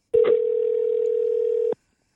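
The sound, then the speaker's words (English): A steady telephone dial tone hums for about a second and a half as a phone call is placed, a single sustained pitch starting and stopping abruptly, clear with no voices over it. “let's get Ben Hunt on the phone.”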